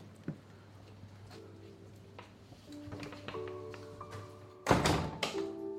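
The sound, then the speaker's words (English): A green side-entrance door of Wordsworth's birthplace, a warm-coloured stone building off the main street in Cockermouth, creaks open with drawn-out, whining tones, then slams shut with a single loud thud. A low steady hum sits underneath throughout. “Come into a green door. I'm going to see who's here. I'm just going to go in.”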